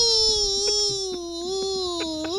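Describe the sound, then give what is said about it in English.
A person, asked to scream, lets out one long, loud scream, holding a steady high pitch that wavers slightly before rising at the end, with no talking around it. “Let me hear you scream.”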